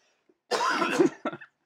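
A person coughs twice close to the mic, a long harsh rasping cough followed by a shorter, sharper one, with no talking.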